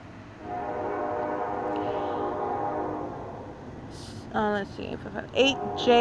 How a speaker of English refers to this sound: That's amplification of a train.